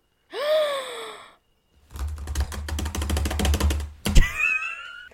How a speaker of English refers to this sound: Yeah, I'm just going to Google so we get the obligatory typing sounds, France and COVID.